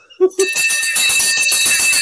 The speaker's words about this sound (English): I just like hearing the bell.